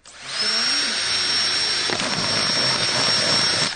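A power drill whirs loudly with a steady high-pitched whine, then about halfway through turns rougher and crackly as the bit chews through a plastic bottle, making a hole about 5 or 6 millimetres across in its side very close to the base, running without pause.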